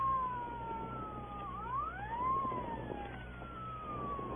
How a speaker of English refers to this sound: What chowderhead was stupid enough to use his siren?